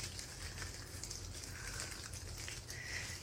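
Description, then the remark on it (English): Steady, soft rain patters continuously on a surface, a faint even hiss with light scattered drops throughout and no voices. “We'll sing to the rain.”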